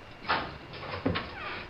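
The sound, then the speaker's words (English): A door is opened, with a short scraping rattle followed a moment later by a heavier clunk of the latch and a soft creak as it swings. “Please, just open the door already!”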